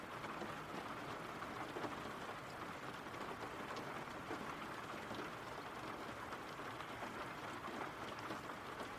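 rain

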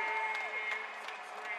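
arena crowd cheering

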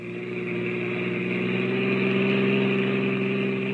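car engine running

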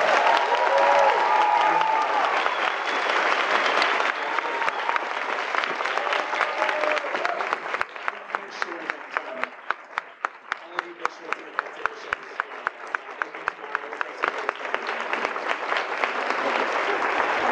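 audience round of applause

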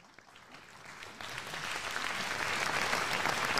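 audience applauding

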